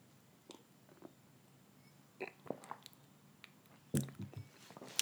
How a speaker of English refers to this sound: I'm just going to have a sip of my chamomile tea.